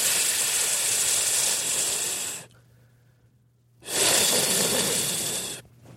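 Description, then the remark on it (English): A cell phone turned into a vacuum cleaner makes a slurping, rushing suction noise in two loud, steady bursts of about two seconds each, separated by a brief pause, with a faint low hum continuing underneath. “Kind of sounds like a slurping sound, but really it can vacuum everything.”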